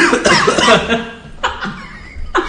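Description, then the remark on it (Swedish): A person coughs in a few short, harsh bursts, starting with a longer rough fit and followed by three quick, separate coughs, fairly loud, with a hint of laughter mixed in. “Ja, alla ska gå och hosta på honom.”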